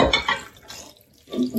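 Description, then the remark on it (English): Chicken stock is poured over cabbage rolls and tinned tomatoes in a pot, in two short splashing bursts separated by a brief lull, with no one talking. “And then I've got the chicken stock, which I'm going to pour over the top of that.”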